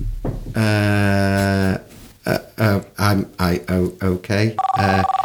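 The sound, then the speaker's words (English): A phone rings loudly with an electronic ringtone: one long sustained tone, then a quick rhythmic run of short melodic bursts, ending on a steady high beep. “Excuse me, do you want to take your phone call outside?”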